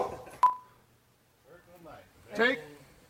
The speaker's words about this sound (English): I like the dog barking. She just gives it that well, just enough of the tinge of white trash that it otherwise might be missing.